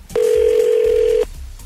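A telephone dial tone as the morning show on radio station 102.9 The Wolf places a call for its Second Date Update segment: one loud, steady, mid-pitched hum lasting about a second before cutting off abruptly, with no voices and only a faint background hiss afterward.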